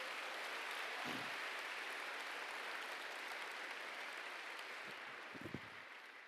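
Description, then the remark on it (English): An audience claps together as a clap offering to God in a dense, steady wash of applause that holds at an even, loud level for several seconds before beginning to taper slightly at the end. “If you believe it, would you give him a clap offering today?”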